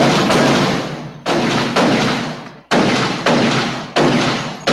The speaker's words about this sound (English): Can I get a little shots fired real quick?